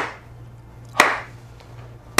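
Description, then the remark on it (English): A crisp, sharp hand clap rings out over a low steady hum, followed by another brief clap at the very end; no one speaks. “Just one clap.”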